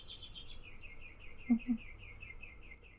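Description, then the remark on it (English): Birds chirp in a steady, rapid series of high, repeating notes that run the whole way through, with a couple of brief low sounds breaking in midway. “The birds are with us.”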